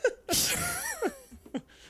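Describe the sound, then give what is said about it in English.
A stifled yawn: a long breathy exhale with a strained, wavering vocal whine lasting about a second, followed by a couple of short breathy puffs and sniffs. “That's how I suppress a yawn.”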